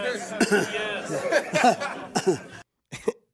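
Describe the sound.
Andy Reid talks for a couple of seconds, saying he'll stick around if they'll have him, then after a brief pause lets out a single short, sarcastic-sounding cough, sharp and moderately loud, before silence.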